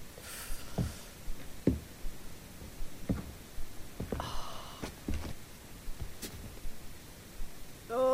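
Faint footsteps echo along a corridor, a handful of soft, slightly uneven thuds spread over several seconds against a steady hiss of background noise.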